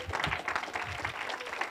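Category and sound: crowd, audience clapping hands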